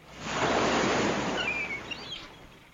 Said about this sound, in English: The bluff is high above the shoreline, where waves crash below.